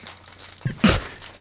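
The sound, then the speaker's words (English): A woman chews through a box of Ritz crackers: crunchy chewing with a couple of short, crisp bursts, a softer crackle followed by a louder, sharper crunch, then quiet rustling. No one speaks. “The wife's chewing through a box of Ritz crackers.”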